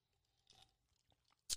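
Someone quietly sips an energy drink during a recording, with a soft slurp, a few small wet mouth clicks, and a brief sharp gulp-like burst at the end. No one talks.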